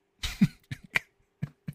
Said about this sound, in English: I feel like my mouth was all watery. I swallowed back and it went down the wrong pipe.